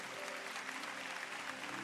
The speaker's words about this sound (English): Why not let's give Jesus a big hand clap tonight.